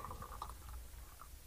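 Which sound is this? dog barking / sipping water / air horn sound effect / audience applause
sipping water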